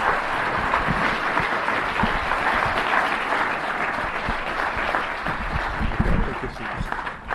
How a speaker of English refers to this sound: A lot of people saw all your movies, so this applause is for an amazing body of work.